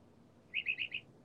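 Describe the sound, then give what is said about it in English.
A bird chirps four quick, high notes in a rapid burst over a faint, steady background hiss, moderately loud. “I hear a bird, but I don't hear you.”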